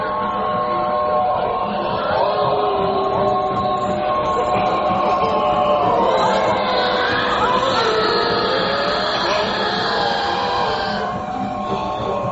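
A very old train with black smoke rumbling past, a steady mechanical roar with an organ playing on it though nobody plays it, sustained, wavering organ tones layered over it, holding loud and even for about twelve seconds with no voices.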